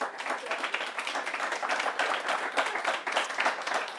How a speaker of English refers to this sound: How about a round of applause for our panelists with some great interventions?